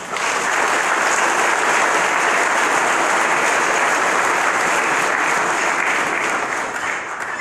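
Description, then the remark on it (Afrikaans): An audience applauds steadily for several seconds to welcome new members into the audience, a dense, even wash of many hands clapping at constant loudness, with no voices rising above it. “Kom ons klap nou hande om hierdie lidmate welkom te heet in die gemeente.”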